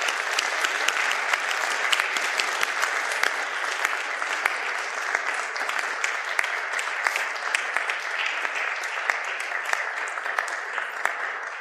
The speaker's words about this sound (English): All right, let's give these kids a round of applause, folks. Just welcome them into New Church Live.